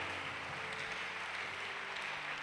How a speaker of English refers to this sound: Hey, you can do better with your hand clap.